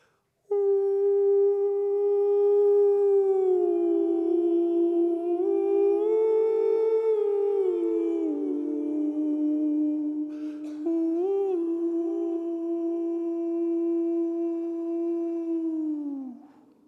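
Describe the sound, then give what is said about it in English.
A voice imitates an owl with one long, sustained howling call that glides up and down in pitch for about sixteen seconds, with a brief break near the end. It is steady and fairly loud. “So I love this owl howl.”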